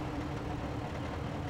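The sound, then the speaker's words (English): A diesel generator powering the village of Old Crow, home to 250 people, burning diesel flown in by airplane, hums in a steady, unbroken drone, its low rumble holding even in loudness throughout with no voices. “The diesel generator hums as the caribou herd passes through, heading north to its calving ground in the summer.”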